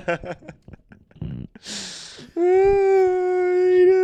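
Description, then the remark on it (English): A puppy lets out a few short, broken whimpers and a breathy rustle, then breaks into one long, steady howl that holds loud for nearly two seconds. “Welcome, me, my puppy, honey.”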